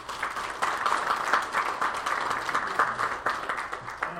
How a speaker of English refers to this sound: And so our speaker today is the leader of Cool Kids Ministry. Would you give a nice warm round of applause for